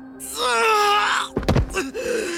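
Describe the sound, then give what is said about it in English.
A man, as Achilles, lets out a loud, drawn-out cry of pain as he collapses, then a heavy thump like a body hitting the ground, followed by a brief strained groan. “Then Achilles collapsed and cried out.”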